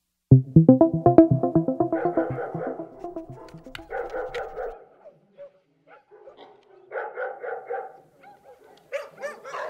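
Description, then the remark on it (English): A dog tied up outside barks in a rapid burst of yaps, then breaks into drawn-out whining and yelping cries with short pauses between them. “Cinnamon! Come on! I'm tied up out here. Brenda won't let me in.”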